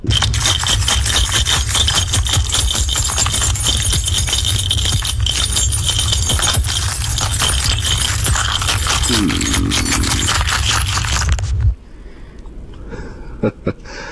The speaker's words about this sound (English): I'm going to say your car keys in a bowl. It is my car keys, but just generally shaken.